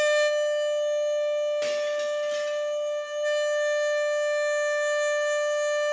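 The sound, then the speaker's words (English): Air horns blare a loud, steady tone with strong harmonic bands continuously for about six seconds, briefly dipping near the end before resuming, with no voices. “Oh, these are air horns!”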